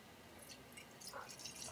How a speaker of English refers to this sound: All right. So I'm going to pour this into my wine glass.